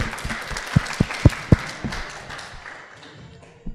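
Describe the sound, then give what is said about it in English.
An audience applauds the speakers at the end of a mezzanine discussion on the Mountain of Salt, City of Light series, with scattered, uneven claps, a few sharp louder ones standing out early on before the clapping thins and fades out. “We just give them a round of applause.”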